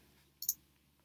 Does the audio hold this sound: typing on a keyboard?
yes